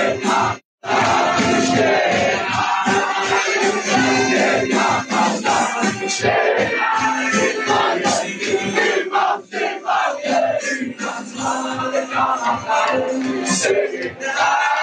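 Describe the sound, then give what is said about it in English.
A large crowd cheers and shouts loudly and continuously at a fire set on the Al-Aqsa Mosque, dense, with a steady rhythmic pulse running through it like chanting or clapping in unison. “They're all cheering.”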